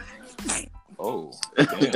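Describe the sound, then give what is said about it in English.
A single sharp sneeze bursts out, surrounded by casual conversational speech from a couple of voices. “what was that? Ooh, bless you.”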